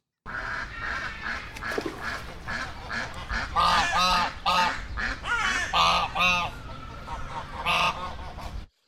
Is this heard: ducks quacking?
yes